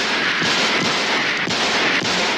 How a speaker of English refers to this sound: I shot him 6 times. I shot him in the heart.